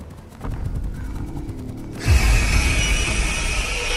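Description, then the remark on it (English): A soft mechanical rattle ticks for a couple of seconds, then a sudden loud, harsh metallic screech bursts in and holds steady, shrill and grinding, until the end. No one speaks. “It sounded like a dying cat mixed with metal.”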